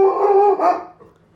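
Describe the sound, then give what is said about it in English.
A dog named Bodie, reacting to a delivery, lets out a loud, drawn-out bark that rises into a brief howl, lasting under a second before trailing off into quiet. No one speaks. “Stop barking.”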